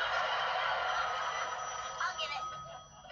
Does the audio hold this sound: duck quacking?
yes